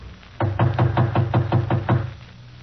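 A rapid, even series of about nine solid knocks on a partly open wooden apartment door, fairly loud, with no voices.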